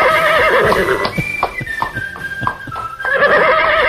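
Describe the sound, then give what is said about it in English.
A horse neighs loudly, a long wavering whinny with a descending pitch and rapid pulsing shakes, filling the whole few seconds with no talking. “And now we have our own brand of horse, 7FM Dobbin.”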